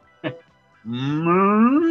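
A neighbour's cow, next door on the other side of the trees, lets out a long, loud moo nearby, rising in pitch as it goes, preceded by a brief short grunt. No one is talking.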